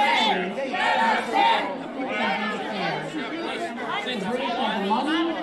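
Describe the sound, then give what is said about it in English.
A large crowd of people shut out of an oversold Trump speech event shouts and chatters over each other in 100-degree heat, demanding to be let in, a dense wall of agitated, overlapping voices at steady loudness with occasional louder yells rising out of the din. “And there are a whole bunch of people furious in 100 degree heat.”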